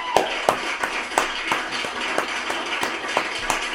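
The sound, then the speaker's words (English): About a dozen sharp claps at a steady, even pace, roughly three per second, over a low background hum with no talking, given for the birthdays of two rappers. “Let's give them all some claps.”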